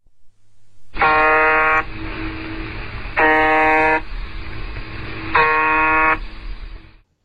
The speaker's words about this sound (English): But there are other weird encrypted sounds as well. For example, the Japanese slot machine. The buzzer.